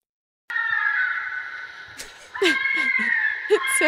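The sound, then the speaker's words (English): A fisher's eerie, high-pitched scream: a long, wavering, wail-like cry that dips briefly, then swells louder again, with a few sharp rasping bursts breaking through. “Also, fishers have these very spooky screams that sound, well, I'm just going to play a brief clip of this for you and see what you think.”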